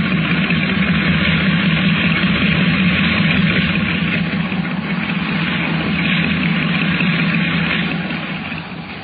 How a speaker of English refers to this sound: From the sound of it, that engine needs attention.